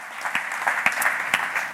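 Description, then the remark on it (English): An audience at a church service claps steadily, a dense wash of many hands with a few sharper claps standing out, sustained at an even level throughout without any voices. “Well, hey, guys, yeah, you can clap one more time.”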